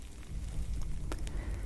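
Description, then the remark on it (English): Quiet, soft paintbrush strokes on canvas while painting a bird: a low, steady papery rustle with a couple of brief, light strokes standing out near the end, and no talking. “I also like the delicate touches that your brush makes on the canvas, ever so slightly.”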